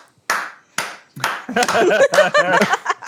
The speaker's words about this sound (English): Learn to clap, it's dead simple. You just do this. That's it. That's clapping. You don't need to do anything more. Actually, you do this.